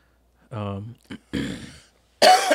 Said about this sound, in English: You gave me COVID. I wasn't coughing before.